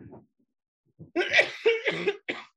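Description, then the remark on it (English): A harsh fit of coughing from someone with allergies: a faint cough first, then after a pause a burst of three or four loud, rough coughs in quick succession. No talking. “Excuse me, just let me cough and get that over with.”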